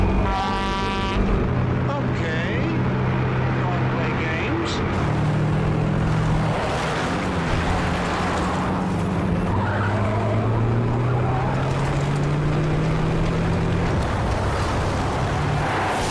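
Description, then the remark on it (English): A heavy truck engine roars loudly, its deep droning pitch climbing and swelling in repeated surges, with harsh grinding and skidding noise running underneath the whole time. “Like, even today, I would say, like, just the sound design on this truck, like, how it'll, like, ramp up, like, it can be, like, intimidating.”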